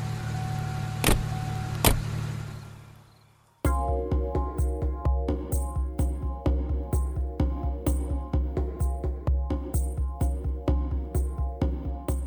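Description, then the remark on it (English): A car engine hums steadily as a car approaches, with a couple of sharp clicks, fades briefly, then returns as a loud, rhythmic pulsing running without pause. No one speaks. “There's a car coming.”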